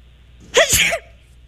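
a person sneezing

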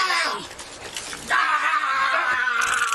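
man screaming in pain

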